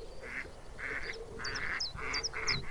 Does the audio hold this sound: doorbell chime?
no